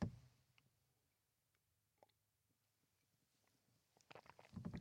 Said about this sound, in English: Just going to have a sip of coffee.